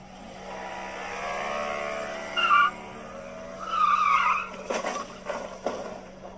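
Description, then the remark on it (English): A car engine drones steadily, then tires squeal in two sharp skids as the car speeds off in a parking lot, followed by several loud banging impacts as it crashes into things, including a median, with no one speaking. “The guy gets in the car, he's about to skirt off and just start hitting shit, crashing into shit.”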